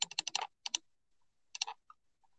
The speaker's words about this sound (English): Are you clicking? I'm going through the question list.